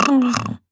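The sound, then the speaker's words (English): A person imitates their female dog's snore with one short, gruff, grunting snort, loud, followed by a brief silence. “What did her snore sound like? Just like.”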